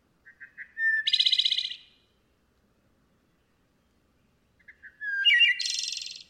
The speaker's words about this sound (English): That melodic flute, it just like I can close my eyes and listen to that song and it will transport me to like some magical place. That sound gets me to stop every single time. No matter what I'm doing, I will stop and listen to the wood thrush.